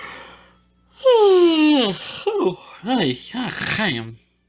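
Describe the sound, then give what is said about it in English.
A loud yawn with a long voiced sigh that slides downward in pitch, followed by a few shorter groaning, drawn-out vocal sounds as it trails off. “I am yawning like crazy right now.”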